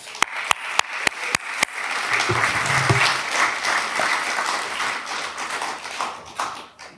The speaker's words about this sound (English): And so, by your applause this morning, can we thank God and welcome Dr. Jonathan Pennington.